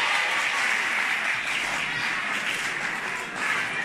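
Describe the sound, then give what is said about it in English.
A crowd at a school claps for themselves, steadily and loudly for several seconds, the dense patter of many hands forming a continuous wash of applause with no voices on top. “Clap for yourselves.”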